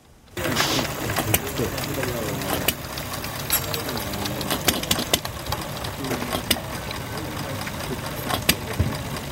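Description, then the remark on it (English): A small old engine runs steadily on a man's table, recorded on a phone, a busy mechanical chatter punctuated by sharp clicks and knocks, while people talk over it. “He's oiling that engine over there. But this one, man, check that out.”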